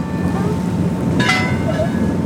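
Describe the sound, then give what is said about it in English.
A boat pitching on choppy water on its way out toward the Farallon Islands, with a steady broad rumble of engine and wash, a brief splashy burst of spray around the middle, and faint tonal hum throughout. “As we continue on our way, the water gets choppier and the boat is rocking back and forth.”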